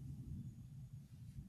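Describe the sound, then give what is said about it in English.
A low rumble of thunder rolls steadily through the whole moment, deep, muffled and faint, as rain begins to fall, with no voices. “I hear the thunder now.”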